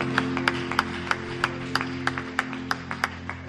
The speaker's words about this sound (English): Let's give a clap of joy.